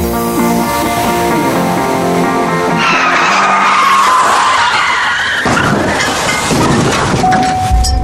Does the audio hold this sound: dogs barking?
no